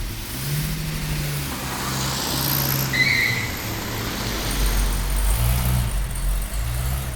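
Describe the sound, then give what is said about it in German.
Car engines rumble and rev steadily as numerous cars drive out of and into an underground garage, a vehicle accelerating and idling amid continuous traffic noise, with a brief high squeal of tires or brakes midway. No one speaks. “Zahlreiche Autos verließen die Tiefgarage, andere fuhren hinein, es herrschte ein lebhafter Betrieb.”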